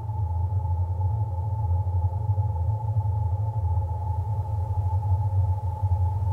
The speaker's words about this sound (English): the sounds that you're hearing were all created using ancient objects, such as old springs. Vinyl records from the 1960s of easy listening music. The chimes from old clocks. Old kitchen utensils.